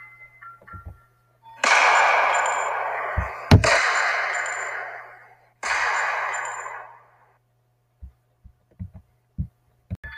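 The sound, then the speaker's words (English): A single sharp, loud gunshot cracks through a swell of rushing noise, followed by another hiss, with dull low thumps pulsing like a heartbeat before and after. No one speaks. “Then a gunshot rings in the man's ears.”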